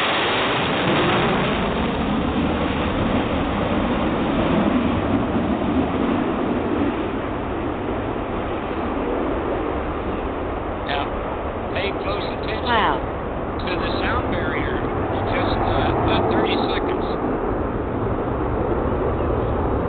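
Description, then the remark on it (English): A Stage 2 jet airplane flies overhead, a loud, continuous rumbling roar that fills all twenty seconds, with brief crackling bursts partway through as it passes. “Stage 2 airplane.”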